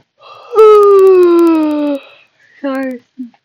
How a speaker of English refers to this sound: A little yawn.